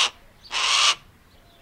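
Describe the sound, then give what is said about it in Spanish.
A Harris's hawk gives a harsh, rasping scream: one drawn-out, loud call in the middle, with clipped bits of similar calls at the start and end, without any talking. “Cazar en grupos permite a las aguilillas rojinegras ir tras presas más grandes como conejos o liebres.”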